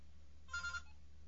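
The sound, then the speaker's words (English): A phone ringtone trills briefly for an incoming call, a short bright burst of electronic ringing lasting under half a second, fairly quiet against a low background hum. “Oh, hold on a second. I got a call.”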